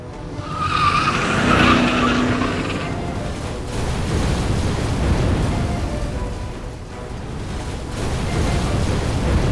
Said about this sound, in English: Alright, so you two both take 10 points of damage as this car is flipping and you're hitting into things. People's limbs are flying around and glass is shattering.